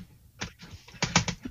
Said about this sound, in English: Damn it, I gotta stop clicking. Calm down. Click happy here.